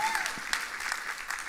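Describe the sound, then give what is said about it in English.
An audience claps together in a dense, continuous patter that stays steady for the whole moment, with a faint voice or tone briefly rising underneath at the start. “Y'all should be clapping.”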